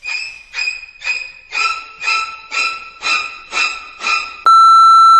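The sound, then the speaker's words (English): A quick run of about nine short, yappy dog barks, then a loud, steady beep from the Soul Food Studios International answering machine that holds as a flat electronic tone until the end. “Please leave your name and message after the beep.”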